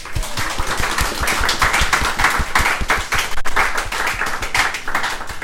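An audience applauds the second-place entry announced at a competition, many hands producing dense, sharp overlapping claps that stay loud and even throughout, with no voices standing out.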